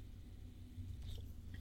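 sipping beer

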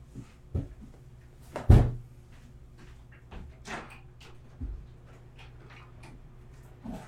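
door being opened

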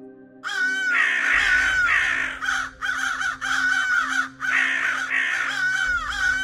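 birds cawing

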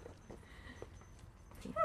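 dog whimpering

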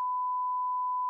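censor bleep tone

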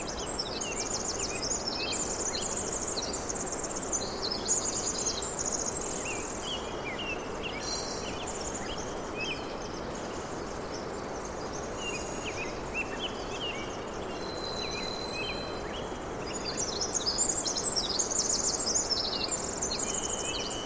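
rain

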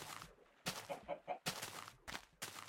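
chickens clucking

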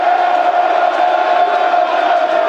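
football stadium crowd cheering

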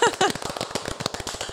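round of applause

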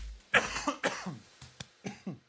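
coughing into the microphone

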